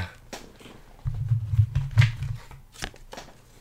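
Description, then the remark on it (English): A deck of cards is shuffled, a brisk riffle of fluttering, flapping clicks lasting just over a second, framed by a few softer handling taps before and after. “Gosh, are these shuffled?”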